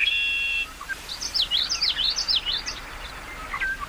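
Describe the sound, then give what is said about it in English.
Whimbrel calls: a rapid rippling series of high whistled notes, about a dozen in quick succession, clear, with no voices and faint background hiss. “That bill is responsible for the name of the curlew genus to which the whimbrel belongs, Numenius, Greek for new moon, a reference to the bird's crescent moon-shaped bill.”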